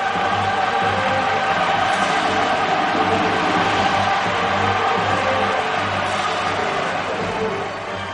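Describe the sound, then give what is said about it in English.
Thunderous applause from a large crowd, a dense, steady roar of clapping that stays loud and unbroken for about eight seconds before easing slightly at the end. “This is how liberty dies, with thunderous applause.”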